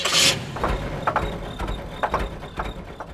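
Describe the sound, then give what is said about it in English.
A car engine idles steadily with a low, rumbling hum, broken by a few soft mechanical clicks. It opens with a short hiss and stays moderately loud throughout. “But a car's engine is also an example of how we've controlled fire.”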